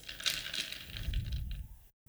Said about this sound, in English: I heard you crunching on that ice wall.